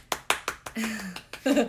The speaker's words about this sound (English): Insert clapping.